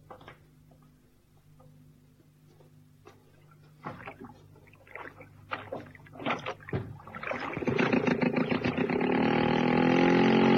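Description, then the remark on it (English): Wooden knocks and creaks of a small boat being boarded and pushed off, followed by oars dipping and splashing in lake water with a steady swishing rhythm that grows louder, in the late afternoon. “Outside and into the boat.”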